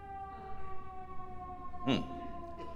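A fire engine siren wails steadily in the background, its sustained tones holding for several seconds, with a brief louder burst of noise partway through and faint room sound underneath.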